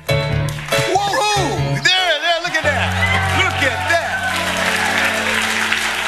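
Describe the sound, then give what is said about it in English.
An audience breaks into loud, sustained applause, a dense wash of clapping mixed with whoops and cheering voices, continuing steadily throughout. “Don't fucking applaud that. Don't applaud.”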